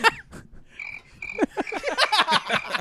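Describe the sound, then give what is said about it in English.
Crickets chirp with a steady, high trill while a chorus of croaking frog-like calls builds quickly and grows louder and busier, with no voices present. “Those crickets must be laughing because this is hilarious.”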